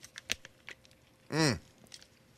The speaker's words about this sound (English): Let's try the baby food. We're squirting it in our mouth. Yeah, give it a good squeeze. Okay. Lips around.